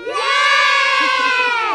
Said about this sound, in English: So guys, I want you to give me a big cheer for your garden after three. One, two, three.